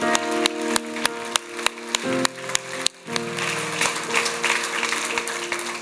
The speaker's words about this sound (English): Come on, clap your hands. Give God some praise. Clap your hands to a faithful God.